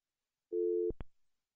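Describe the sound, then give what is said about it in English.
A steady electronic telephone busy tone sounds for about half a second as a call to a guest fails to connect, then cuts off with a couple of sharp clicks as the line hangs up; clear, no voices. “I'm trying to get a special guest on the phone, but it's not working.”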